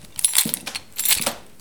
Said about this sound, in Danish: Fordi nu gør du det, som du forbandede ved alle lærere, som havde nøglebundet sådan, du ved, i buksekanten.